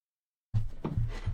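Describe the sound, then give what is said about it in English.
After a brief silence, rummaging through a drawer begins, with several dull knocks and thuds as objects shift and bump against each other in an uneven rhythm. “I was looking in the wrong drawer.”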